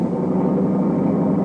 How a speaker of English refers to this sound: I know that car. Never saw him drive like that before.